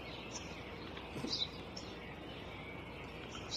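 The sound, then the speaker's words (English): A swallow that has just flown into a backyard, where a father and son sit on a bench, gives a few short, high chirps at scattered moments, thin and fairly faint against a steady outdoor hiss, with no one speaking. “Notice the little bird, the swallow, that's just flown in.”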